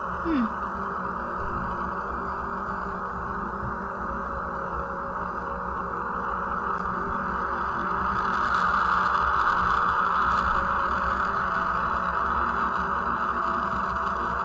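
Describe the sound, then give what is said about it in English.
A spacecraft recording of the planet Jupiter: a steady, dense droning hiss with a whooshing mid-range band that swells slightly louder in the second half, continuous and without speech. “That's Jupiter, man.”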